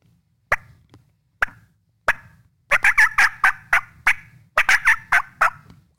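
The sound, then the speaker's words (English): A hen turkey cutting: three sharp, spaced clucks, then a loud rapid burst of irregular, excited clucks and short yelps, clear with no talking. “If she does a cut, she's pissed at you, cut back to her. You know, and here's a cut.”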